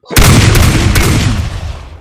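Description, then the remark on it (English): A voice imitates a shotgun blast: one loud, sudden explosive burst that trails off into a long, rough, hissing decay lasting nearly two seconds. “It's not exactly how a shotgun sounds, but okay.”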